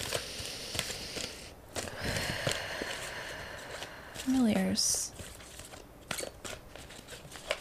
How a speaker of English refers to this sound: One more shuffle. Okay. That's it.